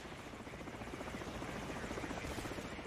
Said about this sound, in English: They sent helicopters, and I the first time in my life witnessing an Apache shooting, and I only have one ear to this day.